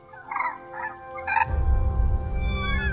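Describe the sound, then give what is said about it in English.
A crane gives three quick, bugling calls in a row, loud, before a rough, rumbling background noise swells up and carries on with faint rising chirps. “Like a crane, I chirp.”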